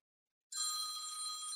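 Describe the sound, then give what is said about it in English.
After half a second of silence, a telephone starts ringing with an incoming call: a steady, bright, high-pitched electronic ring that holds at an even level through to the end, with no voices. “And hey, we're getting a phone call.”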